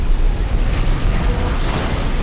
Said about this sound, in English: Cars getting hit by missiles. Cars driving off the Hoover Dam.